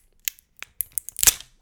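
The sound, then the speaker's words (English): Perforated plastic shrink wrap crackles and tears off a spirits bottle in a quick run of sharp, dry snaps, building to a louder rip near the end. No one speaks. “Let's get the shrink. It's perforated.”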